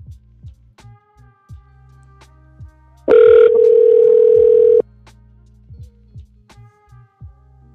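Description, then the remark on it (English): A single loud, steady ringback tone from an outgoing phone call, a repeated attempt to call someone, sounds for about two seconds, then stops. Low hum and faint ticking clicks fill the background, and no one speaks. “You guys can hear the ringing.”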